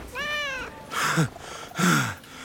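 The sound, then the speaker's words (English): A kitten meows several times, starting with a high, drawn-out tonal cry followed by two shorter, breathier mews, fairly loud with no talking. “Doctor, I brought the kitten you requested.”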